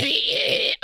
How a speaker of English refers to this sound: It's a metallic screeching is how it's described. And it goes on for 17 seconds.